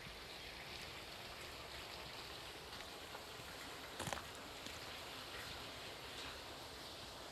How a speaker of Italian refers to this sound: Ascolta il fiume. Cosa senti? What do you hear?